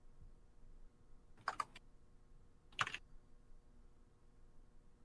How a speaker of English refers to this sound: Oh, something's happening. That's just, typing.